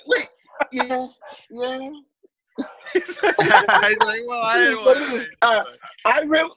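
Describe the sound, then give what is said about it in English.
Human voices imitate a dog barking in a string of short, loud woofs and yelps, several voices overlapping with laughter-like bursts, energetic. “We tried barking in the beginning of my episode, it sounded so dumb.”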